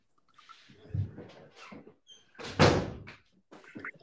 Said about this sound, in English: Let me just shut the door.